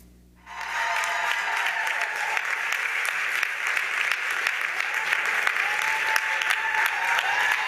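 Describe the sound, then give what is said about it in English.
After a brief hush, an audience bursts into loud, sustained applause for Angela Davis as she appears, before she reaches the podium, giving her a standing ovation: dense overlapping clapping that holds steady and unbroken for several seconds, with no voices rising above it. “When Davis appeared, before she reached the podium, her audience burst into applause and gave her a standing ovation.”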